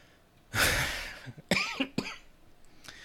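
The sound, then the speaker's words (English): A person coughs several times: a loud, breathy first cough, then a few sharper, shorter coughs spaced about half a second apart, with no talking. “Oh, yeah, I'm still just coughing for no reason.”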